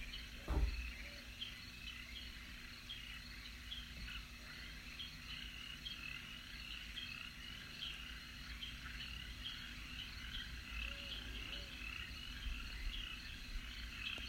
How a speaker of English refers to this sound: It's early in the morning and the sun is rising. Yellow and pink streaks rest above the horizon. You hear frogs and crickets.